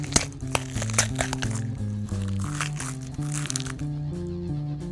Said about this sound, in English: His eyes are getting heavy, and the cocoon begins to split.